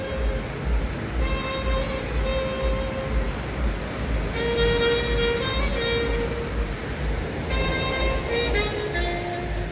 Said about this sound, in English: There's a nice ocean breeze. Let me just open the window. Can you hear? That's clearly the hotel bar downstairs, but there's the ocean as well, which is loud.